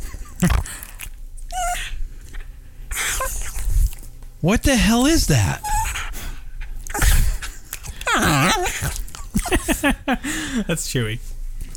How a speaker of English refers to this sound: And she's just a great loving dog. What the hell was that? It sounded like a cow.